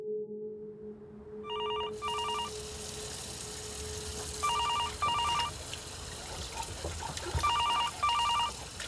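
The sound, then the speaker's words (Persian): A telephone rings in repeated double bursts, three pairs of electronic trills spaced a couple of seconds apart, over a steady hum and faint background noise with no talking. “اون گوشی رو برمیداری لطفاً.”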